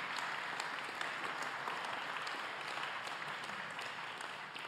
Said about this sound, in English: Give him a clap. Come on.